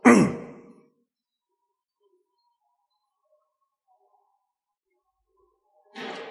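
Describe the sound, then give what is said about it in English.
Someone clears their throat once, a short raspy burst, followed by a long stretch of near silence before another brief breathy noise at the end. “So just let me clear my throat because I'm eating this bread you just feed us with.”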